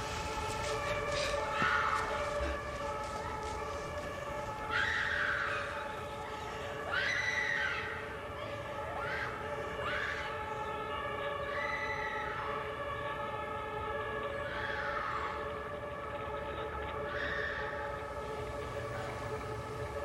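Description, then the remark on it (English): A two-tone German ambulance siren wails repeatedly, its alternating pitch rising and falling in a steady cycle over a constant rumble, moderately loud, with no voices. “That German siren and just that lulls you to sleep.”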